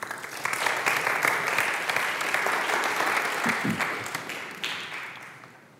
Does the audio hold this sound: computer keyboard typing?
no